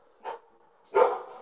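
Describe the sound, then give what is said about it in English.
A dog named Raven gives two barks: a short, softer yap first, then a louder, fuller bark about half a second later, both standing alone with no talking. “Will you tell Raven to shut the fuck up?”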